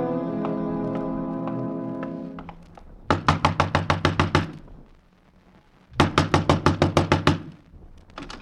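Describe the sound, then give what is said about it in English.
Loud, rapid knocking on a door in two insistent bursts of about ten hard raps each, separated by a short pause, following a fading sustained tone. “Next time, knock soft, mister.”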